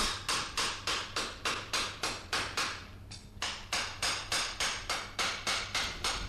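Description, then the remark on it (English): Blacksmith's forge ambience in a forge in the heart of London: a steady, rhythmic run of bright, ringing hammer strikes, about two per second, with a brief pause midway before the blows resume over a low, constant hum. “to find yourself now here, years later, walking in a forge in the heart of London?”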